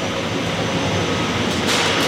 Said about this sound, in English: The pasta plant is big enough to fit a medium-sized airplane. In fact, they used to make parts for Boeing here. The actual machine making the pasta only takes up one area.